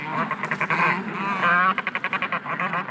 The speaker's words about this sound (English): That squawking is coming from some black and white birds waddling around the beach. Do you know what birds they might be? They're penguins. They can't fly, but they can swim.